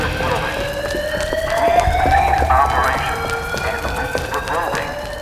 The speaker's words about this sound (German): Moment, der Brandmelder.